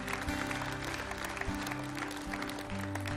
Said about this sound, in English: Yeah, let's give him a hand clap for that. Praise the Lord.